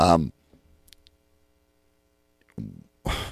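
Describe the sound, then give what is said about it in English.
A couple of soft, quick clicks like a computer mouse, set in a quiet pause between bursts of a man talking. “Hang on, man. I'm clicking on something.”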